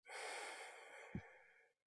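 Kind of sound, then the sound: human body sound, slow deep breath out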